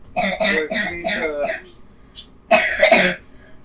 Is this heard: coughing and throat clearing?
yes